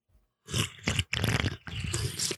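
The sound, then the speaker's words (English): Wet slurping sips of watermelon Mountain Dew soda come in three or four quick noisy bursts with short breaks between, loud, with no talking. “Here's me sipping my watermelon Mountain Dew.”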